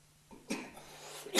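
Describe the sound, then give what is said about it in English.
Two short, husky coughs from a man, spaced about a second apart, with a faint breathy rasp trailing after the first one and no talking. “Have you been coughing at all today?”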